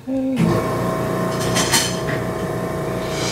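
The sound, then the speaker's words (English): A medical machine switches on with an abrupt, loud start, then settles into a steady, dense mechanical roar with a low whirring hum and a few brief rattling bursts, no voices. “You're going to hear this machine turn on now, okay? It makes a loud noise.”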